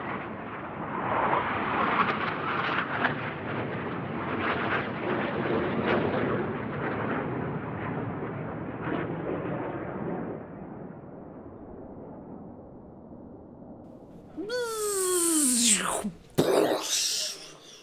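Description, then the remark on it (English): A long, roaring explosive crash of a landing into a thatched cottage rumbles loudly for several seconds and slowly fades, then a shrill descending whistle sweeps down and ends in a sudden sharp burst. “And it was quite a crash because we've just landed in a thatched cottage.”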